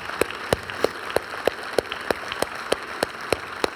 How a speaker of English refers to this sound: Can we give God a round of applause tonight?